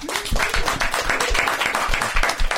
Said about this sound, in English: How about a round of applause for Melissa?